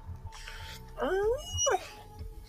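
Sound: dog whimpering and yipping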